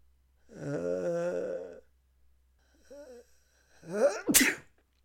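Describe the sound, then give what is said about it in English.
A single loud sneeze, preceded by a drawn-out vocal buildup and a brief intake, ending in a sharp explosive burst. “Actually, I have to sneeze right now.”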